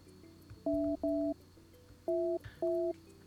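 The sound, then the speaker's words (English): Four short, steady electronic telephone tones sound in two quick pairs, like keypad dialing or a ring signal on a phone line, as a call rings through to a cell phone in New Hampshire; clear and fairly loud with no talking over them. “It's ringing.”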